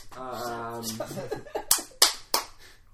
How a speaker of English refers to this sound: The crocodiles applaud you.